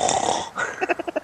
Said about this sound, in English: See, you do snore.